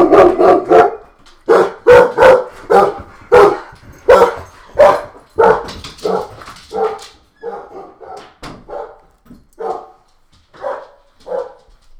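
A dog barks repeatedly and loudly, a steady string of sharp barks that gradually turn softer and more whiny toward the end, with no one talking.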